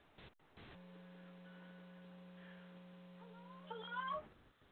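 A steady electrical hum drones throughout, and near the end a single rising cat meow cuts in briefly before everything stops abruptly.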